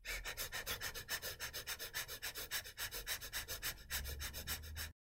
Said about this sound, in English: But let me just try it. So it's really short, shallow breathing, which is replicating what happens in the stress response.